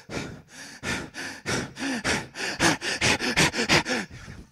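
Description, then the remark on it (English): A person imitates a man's heavy, gasping breaths, a dozen or so harsh panting pulses that grow louder and come faster and closer together, with no speech. “The more he swung and the more he repented, the sound of the man breathing went like this.”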